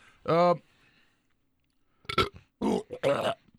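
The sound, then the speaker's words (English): One loud, low, throaty burp that brings up a piece of taco pie, then a second of quiet before a few short bursts of voice, like people starting to talk. “That whole fucking piece of fucking taco pie just came up with that.”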